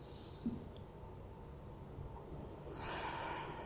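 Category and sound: human body sound, deep breathing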